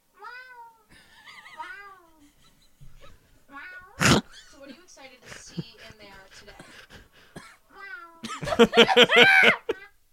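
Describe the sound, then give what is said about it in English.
A woman's voice imitates a cat, giving a few soft meows early on, then a sharp burst, and finally a loud, drawn-out wailing meow near the end. “So she just meows.”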